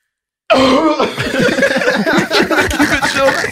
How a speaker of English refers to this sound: Yo, you know those coughs that just take over your body, nigga? You can't fucking not put your tongue up. It's like a horse cough, bro.